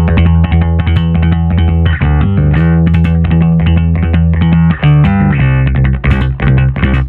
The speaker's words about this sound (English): he does this left hand muting as well, like Rocco Pastilla from …. Like he like lifts his hand, so you get this like these staccato notes.